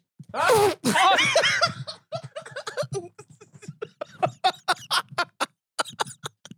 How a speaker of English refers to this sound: I feel like if you're going to sneeze on the show, you got to do it in the funniest way